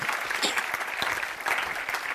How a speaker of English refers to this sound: Somebody say amen and clap your hands. Will you do that?